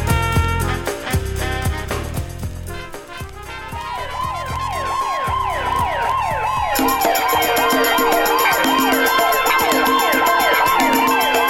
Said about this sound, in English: What's that? Yeah, the sirens you heard in the background. They're back.